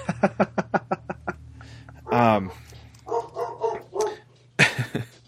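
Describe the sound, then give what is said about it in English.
A quick run of about eight short, sharp dog barks, followed by a longer whiny bark, and then people start talking over a quieter background. “And it sounds like someone else agrees with me too. Yeah, my dog.”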